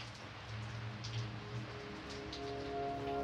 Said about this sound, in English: But what haunts me in the dead hours, hours so early, you feel like the only thing in existence is the rain.